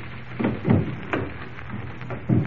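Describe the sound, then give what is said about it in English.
Old wooden stair steps creak and thud under slow, careful footfalls of people creeping up as quietly as possible, about four uneven groans spread across a few seconds, with no talking. “These steps are so creaky.”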